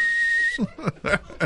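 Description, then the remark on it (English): A person whistles one steady, sustained high note for about half a second, clear, then breaks off as a voice starts talking. “I just wanted you to know, just to understand, living with the new wrestling fan is, you know, I'm like, hey man, you know, got an hour till Raw, and he'll whistles the damn thing everywhere I go.”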